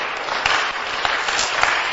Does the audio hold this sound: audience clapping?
yes